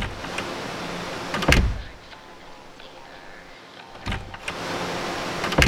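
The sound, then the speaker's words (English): A door is opened with a sharp clunk, followed a few seconds later by a second clunk, both fairly loud over a steady, hissy background with no talking. “Oh, for the love of scotch, I need to put a lock on that door.”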